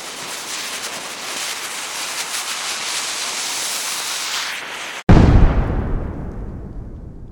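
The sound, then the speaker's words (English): A steady, bright hissing rush builds for several seconds, cuts to a split-second of silence, then a single deep, loud explosion booms and rumbles away into a fading low roar. “Explosions. From the smallest firework to a volcanic eruption, there's just something about things that go boom that people have always found both fascinating and terrifying.”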